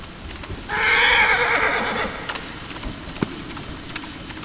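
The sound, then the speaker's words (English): A horse, ridden rushing across the plains as darkness falls, lets out a single long, shaky whinny that rises and trails off, set against a steady hiss of rain falling all around, with a few scattered drops and taps afterward. “Young Lucian, atop his horse, went rushing through the plains, but darkness fell upon his back, and with it fell the rain.”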